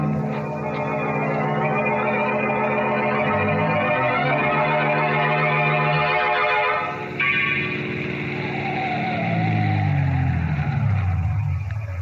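A car engine revs and pulls away, its steady drone shifting pitch as it drives, then slows with a brief tire skid and winds down to a rumbling stop at a cemetery. No one speaks.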